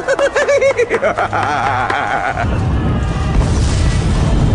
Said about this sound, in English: There's an explosion somewhere, and all the fire alarms, which could hardly be blamed for overreacting, go off at once.